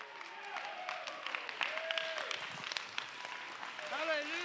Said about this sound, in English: Clap your hands, clap your hands, clap your hands, clap your hands, clap your hands, clap your hands unto the Lord.